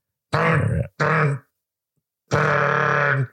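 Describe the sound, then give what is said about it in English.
Loud vocal tic grunts from a person with Tourette's: two short, throaty bursts in quick succession, a brief silence, then a longer, sustained grunt. No speech around them. “Sorry about that. It's my Tourette's.”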